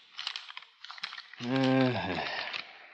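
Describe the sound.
Crisp rustling of the paper pages of a school building's specifications being turned and gone over page by page, in quick bursts, briefly overlapped by a short voiced murmur.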